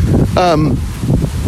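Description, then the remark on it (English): Steady, heavy wind buffets the microphone with a low, rumbling roar throughout, while a voice briefly sounds through the blustery noise. “Wow, it's really windy. This might be bad for the cast.”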